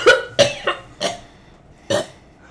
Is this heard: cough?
yes